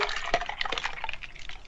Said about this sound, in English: Oh. Oh, who's someone pouring a drink over here, huh?